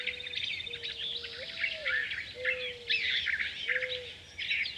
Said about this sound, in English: Here's an easy to overlook bird. Those low cooing sounds are coming from mourning doves.